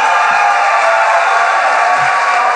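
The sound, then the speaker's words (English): A crowd applauds in a dense, steady wash of clapping that holds at a fairly loud, even level throughout, with no distinct cheers or voices standing out. “The applause is getting less enthusiastic as the...”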